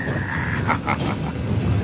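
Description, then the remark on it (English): A steam train labors up a grade, a steady rough hiss and rumble with a couple of heavier puffs breaking through. No one speaks. “Listen to that old train dragging up that grade.”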